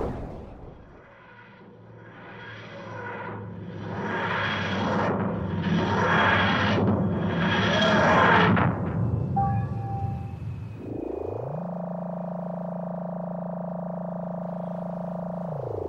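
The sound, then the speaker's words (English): A sci-fi sound effect of a suitcase dematerializing: four or five loud, rhythmic wheezing, grinding swells rise and fall, then give way to a steady, droning electronic hum that holds to the end, with no talking. “Escaping in a dematerializing suitcase.”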